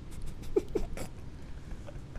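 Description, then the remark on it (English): Two quick, faint dog barks in close succession over a low background hiss with no talking. “If the wind blows, that dog starts.”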